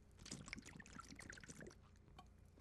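Wet sloshing and gulping as someone takes a quick swig of water, a cluster of liquid swallows over a couple of seconds with no talking.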